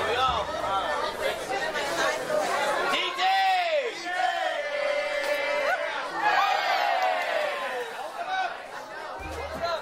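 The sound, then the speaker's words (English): A market crowd at the Pike Place Fish Market chatters and cheers as fishmongers toss 3-foot-long salmon and other fish to each other, with loud shouts and drawn-out calls rising above the steady hubbub. The noise stays lively for the whole stretch. “And with every successful toss and catch, the crowd cheers on.”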